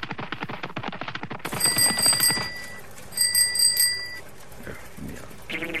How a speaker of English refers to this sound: Well, I heard the mission bell, and I thought it might be coming from here.